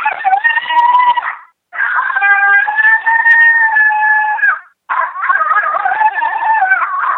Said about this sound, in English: Here's the male coyote howl. It's a non-aggressive howl. It's really good in the breeding season. It's really good spring and summer.